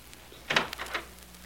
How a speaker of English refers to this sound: Oh, listen, that's the door.